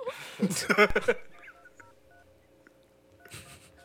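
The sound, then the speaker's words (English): After a brief burst of voices, a few short, faint telephone keypad tones beep at an uneven pace over a quiet electronic hum as a phone call is dialed to a guest, and then voices return. “Let me call him real quick.”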